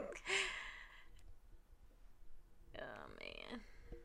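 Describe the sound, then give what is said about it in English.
Two raspy, rattling snores from a sleeping female dog, each lasting under a second and spaced a couple of seconds apart, fairly quiet against a soft background. “Yeah, my dog. Does she not snore like a whole grown person?”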